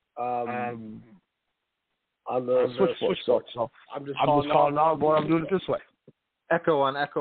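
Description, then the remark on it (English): Muffled, band-limited voice over a phone line comes through in several bursts separated by short silences, sounding garbled as if doubled back on itself with echo. “Echo on echo on echo.”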